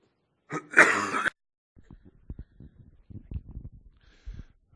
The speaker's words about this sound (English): And I apologize, I was not coughing like this at prayer meeting. This is something new.